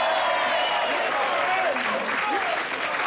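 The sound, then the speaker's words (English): An audience claps steadily for about three seconds for a guest being introduced, a dense, even wash of hand claps at moderate loudness, with a few faint voices and whoops rising through it. “Go on, give him a clap.”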